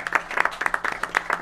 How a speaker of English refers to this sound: And we have already introduced your illustrious mayor, Mayor Kelly Garrett, so give her one more applause.